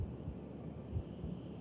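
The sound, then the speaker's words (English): A slow, muffled heartbeat: deep, soft lub-dub thumps repeating about once a second over a low, steady background hum, with no voices present. “You dream of a heartbeat.”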